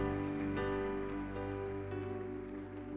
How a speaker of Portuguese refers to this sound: Dê um brado de vitória e aplauda nesse lugar.